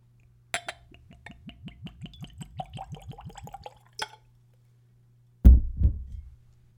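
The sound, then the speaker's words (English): A spirit glugs quickly from a bottle with a screw cap into a clean Glencairn whiskey nosing glass in a steady run of gurgling pulses, followed by a light clink and a dull thud as the bottle is set down. “And let's go for a pour.”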